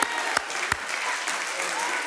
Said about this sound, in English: Hallelujah. Hallelujah. Give God a hand clap.